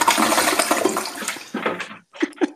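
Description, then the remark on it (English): A toilet flush sound effect: a loud rush of swirling water that gradually drains away, followed by a moment of silence and two short gurgling bursts. “Then you do the toilet flush.”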